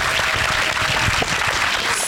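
An audience in a screening room applauds a panel of speakers steadily, a dense wash of many hands clapping at once, loud and sustained throughout without a break.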